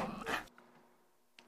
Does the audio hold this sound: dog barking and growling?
yes